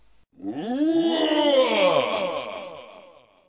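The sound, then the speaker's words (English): A character's single drawn-out roar from the English dub, voiced by a man, strained and harmonic, its pitch rising then sagging over about three seconds before fading out, with no other talk. “This is that same roar for the same time, but in English, okay?”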